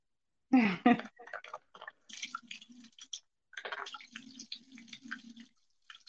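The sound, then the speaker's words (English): Two quick, wet spurts of water squirting out of a toy at the start, followed by soft dripping and low voices murmuring in the background. “Is the water going inside? Yeah. Oh, okay. And then it squirts three.”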